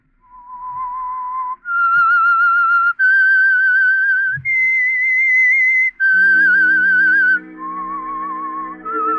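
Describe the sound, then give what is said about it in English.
The whistled theme of the radio drama The Whistler: a lone human whistle carries a slow, wavering melody of long held notes stepping up and down in pitch, later joined by soft low sustained orchestral tones underneath. “Now, back to the Whistler.”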